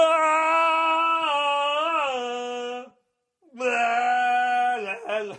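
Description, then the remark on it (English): A single voice imitates the Tomahawk chant, droning a loud, wordless, low-pitched melody in two long sustained phrases separated by a brief pause, with slight pitch dips along the way. “I watched this fucking game, and in the first drive alone, they played that fucking what do you call the Tomahawk chant song?”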